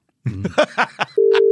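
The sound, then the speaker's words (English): A few short, choppy bursts give way to a steady, loud electronic phone tone that holds without a break to the end, like a ringback heard during an outgoing call. “We're going to talk to him. We're going to call him.”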